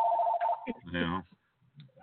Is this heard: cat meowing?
no